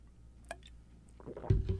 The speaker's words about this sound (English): So let's go back a moment and imagine, hang on, got to get a sip of water.